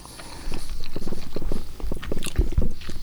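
Steady chewing of a bite of chocolate cake, with soft wet mouth sounds repeating in an even rhythm and no talking.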